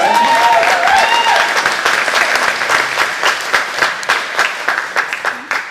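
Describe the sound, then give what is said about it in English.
An audience clapping with Jesus: loud, dense applause throughout, with a few raised voices at the start, gradually settling into a more rhythmic, pulsing beat of claps toward the end. “We can clap with Jesus.”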